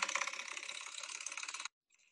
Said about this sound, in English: Hold on. Here it comes. Yep. Hitting a door stopper.